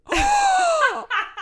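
A weird, squeaky fart: a long, loud, high-pitched whine that slowly sags in pitch for about a second, followed by two short sputtering bursts. No one speaks over it.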